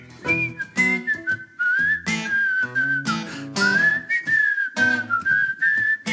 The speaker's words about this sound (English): Can you whistle? No, you do it. You do it.